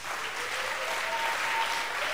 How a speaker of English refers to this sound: So I want us with one accord to clap our hands for the singers.